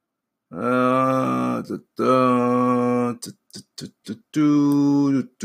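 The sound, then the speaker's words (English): A person hums three long, steady low notes while flipping through stories, broken by a run of short, dry rustling bursts in the middle, like pages being turned quickly. “I'm making noise because it's better to hum than to have dead air as I'm flipping through the stories.”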